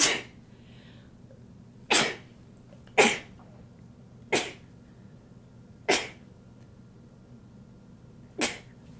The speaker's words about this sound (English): if she sneezes more than twice, she doesn't get a bless you.